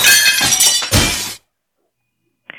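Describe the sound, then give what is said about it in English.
Loud shattering glass from a mirror being broken in a hotel bathroom, a dense burst of crashing and tinkling shards lasting over a second, then silence and a brief faint clink at the end. “What are you breaking? Renovations. Where? In the bathroom. Knock it off. Who is this? You know the mirror?”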